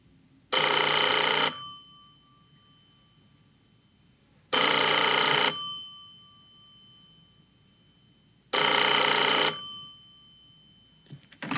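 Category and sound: household object, telephone bell ringing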